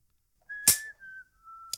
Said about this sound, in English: Oh, this is when the guy is whistling. Billy the Kid whistling.